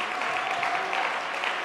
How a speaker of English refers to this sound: Can we clap our hands and give Him praise right now? God, we give You praise right now.